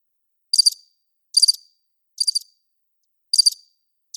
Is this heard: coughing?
no